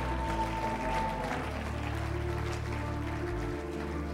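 A crowd claps steadily in a round of applause, a dense, even patter that carries through all four seconds, mixed with a loud music track holding sustained low notes that shift partway through.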